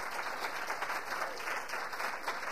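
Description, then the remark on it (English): Steady applause from an audience, a dense wash of many hands clapping at once, holding at an even, moderate level throughout without building or fading. “How many of you have parented a daughter? Would you applaud if you can?”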